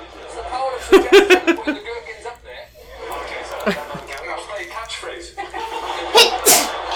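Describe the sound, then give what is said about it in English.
A single sharp, fairly loud sneeze bursts out near the end, after some voices talking and chuckling. “Bless you. Thank you.”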